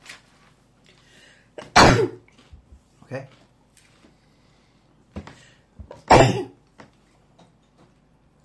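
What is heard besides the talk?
sneeze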